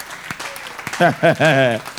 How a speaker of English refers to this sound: All those who are clapping, clap for them.